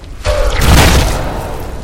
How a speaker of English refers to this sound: You're so powerful, this doesn't even take a spell. You just muster up this arcane might, and you blast this section of the wall.